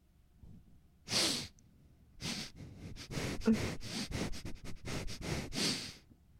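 Loud sniffing: one long sharp inhale, a pause, then a rapid string of about a dozen quick sniffs, ending with another drawn-out sniff. No talking.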